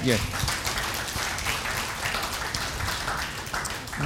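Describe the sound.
A crowd applauds steadily for about four seconds, a dense, even wash of many hands clapping together at a fairly loud level, with some voices mixed in.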